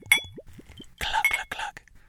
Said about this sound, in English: If you listen, listeners, you could hear the glug, glug, glug of my little sample bottle. Actually, I got to pour a little more.